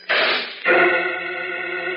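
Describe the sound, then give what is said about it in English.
A rushing, scraping noise ends in a sharp metallic clang as the heavy metal door of a machine slams shut, its bright, ringing tones sustaining steadily afterward. No voices are heard. “The metal door to the machine clangs shut on Jim Olsen and Professor Fields.”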